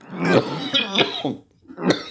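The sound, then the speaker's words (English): A loud coughing fit with an odd, strained, wheezy quality: several harsh bursts in quick succession, a brief pause, then one more cough. “That much like some people have funny laughs, you have a really funny cough.”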